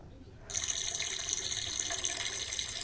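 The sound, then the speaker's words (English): A peeing sound effect played from a phone used as a soundboard: after a brief quiet moment, a steady, hissy stream of liquid splashing starts abruptly and continues without pause, bright and fairly loud, with no talking over it. “You want to hear pee?”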